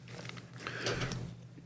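Wet chewing of a Built Bar protein bar, with soft mouth clicks and crackles over a steady low hum, growing slightly louder midway through the short stretch.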